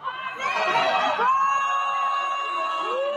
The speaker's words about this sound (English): The crowd is yelling at her to sing, and she just looks completely uninterested.